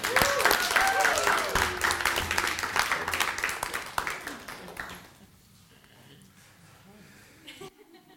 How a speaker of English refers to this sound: Let's give them a clap.